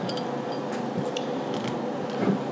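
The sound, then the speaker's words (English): A glass marble rattles inside a drink bottle, giving a few scattered, light clinks and ticks over a steady low background hiss, with no talking. “It sounds like a real marble.”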